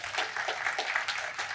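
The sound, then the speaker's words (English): An audience claps steadily for the announcement that a few will be ordained toward the end of the year, a dense patter of many hands with fairly even loudness throughout, with no one speaking over it. “I thought we'll clap for that.”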